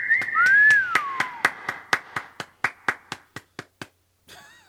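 Steady, evenly spaced hand claps ring out loud, about a dozen and a half in a row, while a bright sliding whistle cheers over the first second before the claps taper off.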